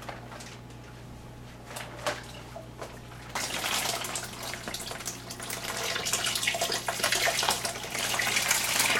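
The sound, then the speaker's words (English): Distilled water pours into a large fermenting jug of concentrated grape juice for winemaking, filling it to the 6-gallon mark, beginning with a few scattered splashes before settling into a steady, rushing stream that grows fuller and louder as it fills, over a low constant hum. “Now we're just fill it the rest of the way to the 6-gallon mark.”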